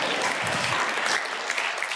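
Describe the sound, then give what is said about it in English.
An audience applauds with dense, steady clapping at a fairly loud, even level for the full two seconds after a couple wins a dance contest, and a brief burst of cheering voices mixes in early on. “So you cheer because we won a dance contest, but not because our marriage has lasted a long time.”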